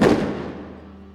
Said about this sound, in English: It fell, succumbing to the gunfire.